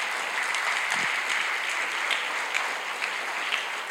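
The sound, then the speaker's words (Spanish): A church audience claps loudly and steadily during worship, a dense wash of many hands filling the whole stretch with no voices standing out. “Oh, dale un aplauso fuerte, Señor, pueblo de Dios.”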